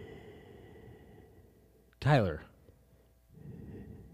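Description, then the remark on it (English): A person with allergies, unable to breathe through the nose, breathes heavily into a microphone, the breath rumbling against it, broken by a brief, sharp voiced gasp midway before the muffled breath noise returns. “You're breathing into the microphone so loud.”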